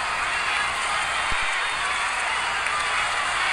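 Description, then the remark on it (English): A boxing crowd at the Shane Mosley versus Oscar De La Hoya fight cheers as Mosley throws from a southpaw stance, a loud, steady roar that fills the whole stretch without a break, a dense wash of voices with no single speaker standing out. “Crowd responding to the new action as Mosley throws from a new position.”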